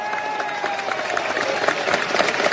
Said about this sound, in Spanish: Y sé que hay muchos funcionarios públicos aquí en esta plaza. Un aplauso para ellos.